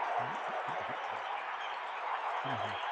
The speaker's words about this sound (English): Ball fakes a three. Dives into Patterson. Draws the foul. Listen to the crowd.